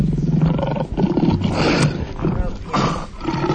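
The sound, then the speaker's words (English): A very big liger roars loudly, a deep, rough, sustained bellow filling the whole few seconds with brief dips between surges. “There's Patrick. Patrick is a... The liger.”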